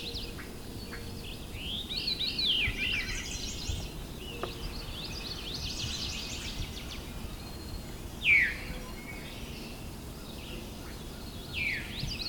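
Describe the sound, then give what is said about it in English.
A veery gives two sharp, downslurred 'veer' calls, fairly close and a few seconds apart, over a steady wash of other birdsong. “There's the veeroo call.”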